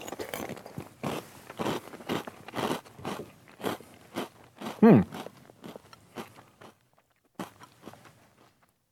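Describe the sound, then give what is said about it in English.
Crunching and chewing of Reese's Puffs Cluster Crunch cereal clusters coated in a sugary substance, a rapid series of loud, irregular crunches that gradually slow and soften, with a brief louder bite near the middle and no talking. “Let me give this a whirl. Again, Reese's Puffs Cluster Crunch.”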